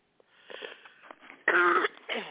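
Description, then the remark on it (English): A person coughs: raspy, wheezy breaths build into one long, harsh, loud cough, then a shorter cough follows. No talking. “I'm still got this cough. I apologize.”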